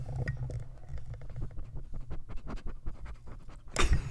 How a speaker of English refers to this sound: Could you hear her sniffing? You can hear her. Don't even act like you didn't hear her sniff.